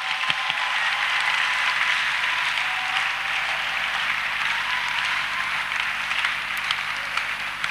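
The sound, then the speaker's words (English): A crowd claps steadily for several seconds as a clap offering to the Lord. It is a dense, bright wash of overlapping hand claps, holding a fairly even loudness throughout, with no voices standing out. “Somebody give the Lord a clap offering again.”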